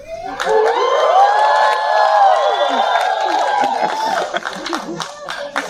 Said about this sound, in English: you can add an applause in post-production.